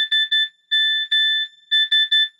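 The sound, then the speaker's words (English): An old Nokia phone's SMS text message tone beeping out Morse code on receiving a text: three short beeps, two longer ones, then three short again, a clear, fairly loud high-pitched electronic tone with no talking. “But what this is like when you actually got like an SMS text message, it would do this Morse code BB sound.”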